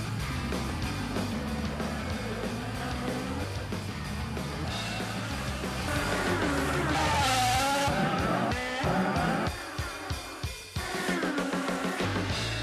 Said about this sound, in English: Cars will now go two by two, and the green flag is out. Will Power with a big jump.